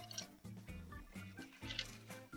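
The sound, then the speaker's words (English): A cocktail pours steadily from a stirring glass through a cobbler strainer into a glass, a continuous trickling, bubbling stream with some dripping, lasting a few seconds and no talking over it. “And we are going to take our cobbler strainer, put it into our stirring glass, and we are going to pour our drink.”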